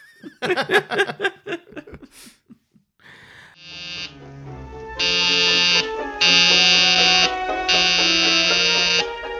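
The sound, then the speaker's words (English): A harsh electric call buzzer, rung by Blanche Hudson pressing a button, sounds in several long, insistent bursts, loud, with short gaps between them, following a brief stretch of laughing voices at the start. “She's definitely a bit passive aggressive with that buzzer.”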